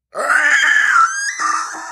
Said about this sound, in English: as she screamed in anguish.